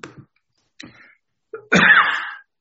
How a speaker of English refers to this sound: Okay, pardon me for coughing.